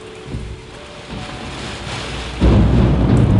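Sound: rain with thunder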